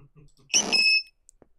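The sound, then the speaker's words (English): A short, shrill Pokémon cry, played in a game of guessing Pokémon by their cries, bursts out for about half a second, a bright squeaky screech with piercing high tones over a buzzy, noisy body, following some faint low murmuring. “Well, I don't know the Cries.”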